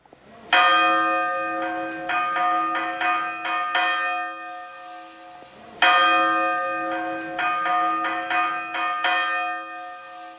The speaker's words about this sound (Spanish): Ahora escuchamos a Francesc tocar una de las campanas del Miquelet, la más antigua, la Caterina.